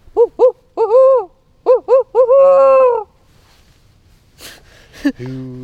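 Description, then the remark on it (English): A person in a small forest on Bainbridge Island, west of Seattle, imitates a barred owl, belting out a loud rhythmic series of hooting calls with the last notes drawn out, followed by a sharp breath and a brief low voice. “… suddenly belts out the best barred owl call for me.”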